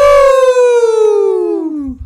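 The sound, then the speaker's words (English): People imitate a wolf howl: one long, loud voiced wail that starts high and slides steadily downward in pitch for nearly two seconds before breaking off. “But I would like to end this with a big howl from the lone wolves that are slowly building a wolf pack of winners.”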